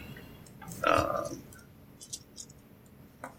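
A brief clatter of dice tumbling near the start, followed by a few scattered, light clicks as they knock together and settle, moderately quiet.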